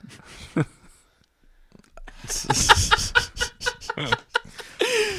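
A chicken clucks in a quick, busy run of loud squawks and clucks, starting after a brief quiet pause and ending on a rising, drawn-out cackle.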